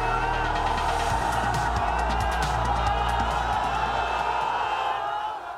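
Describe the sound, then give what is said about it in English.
A large crowd in northern Syria cheers and shouts together in a dense, steady roar, with many overlapping voices and rhythmic chanting of "God is great" as rescuers pull a family of earthquake survivors from the rubble, plus a few sharp claps or knocks scattered through. “Crowds cheer and chant "God is great" as rescuers pull a family of survivors from the rubble in northern Syria today, all of them expected to recover.”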